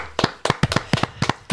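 About seven sharp hand claps at a brisk, slightly uneven pace, fairly loud, with no talking underneath.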